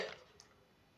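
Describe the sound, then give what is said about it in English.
A single short hiccup right at the start, a quick abrupt catch of breath, followed by near silence with a faint tiny click. “Okay, I have the hiccups.”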